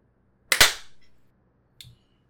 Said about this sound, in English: Do we want to do a clap? Yes, we should do a clap.